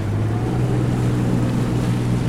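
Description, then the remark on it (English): A small, fast motorboat's engine drones steadily and loudly on the roughly 80-kilometre crossing from Santa Cruz Island to Isabela Island in the Galapagos, with a constant low hum under a wash of wind and rushing water, unbroken for the whole stretch with no voices. “And then from Santa Cruz Island, get a fast boat to Isabella Island, one of the other Galapagos Islands, which is about 80 kilometers, the same distance as from here to Wales on a much smaller fast boat.”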